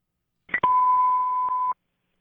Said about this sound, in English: So again, you're going to hear some tones. If you're a cop, you're a fireman, you're going to hear the alert tones come out. Don't panic and pull off the road. It's coming from your radio.